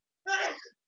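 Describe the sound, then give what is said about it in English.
A single short sneeze, an abrupt voiced burst that is loud at first and trails off within about half a second, with no talk over it. “Bless you.”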